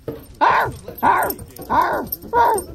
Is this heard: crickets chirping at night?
no